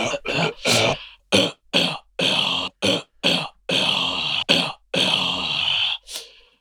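A harsh, rasping cough repeats in about ten loud bursts with short gaps between them, hacking and throaty, with no talking over it.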